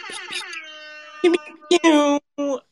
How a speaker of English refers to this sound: Let me get the air horn.